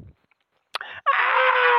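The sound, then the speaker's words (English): A voice lets out a sharp, shrill scream in imitation, starting with a brief yelp and then a loud, sustained wail held until the end, with no talking alongside. “All right, what is the scream of death?”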